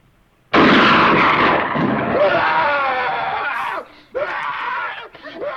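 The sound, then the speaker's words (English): Loud, frantic screaming from a movie trailer bursts in suddenly over a dense, roaring wall of music, with several wailing voices layered together. It cuts out briefly near the end, then the screams surge back. “The original trailers for this movie have no words in it. It's just screaming.”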